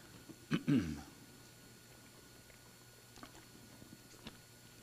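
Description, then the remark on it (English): A pastor takes a quick gulp of water before a Bible teaching. It is a soft, low swallowing sound lasting under a second, followed by a few faint, scattered clicks in an otherwise quiet stretch with no talking. “Thank you all very much for staring at me while I swallowed.”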